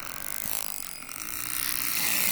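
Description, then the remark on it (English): Narwhal clicking, about 1,000 clicks per second: a dense, rapid train of crisp clicks buzzing together almost like a ratchet, steady and fairly loud throughout, rising slightly in intensity toward the end, with no voices. “Dang, 1,000 clicks of sound per second.”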